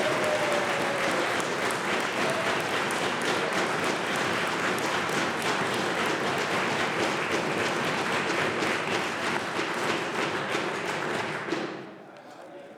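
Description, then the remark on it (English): Sustained applause from many people in a legislative house, a dense steady wash of clapping with occasional desk-thumping, holding loud for about eleven seconds before dropping off abruptly. “If they want to applaud people suffering, that's on this government.”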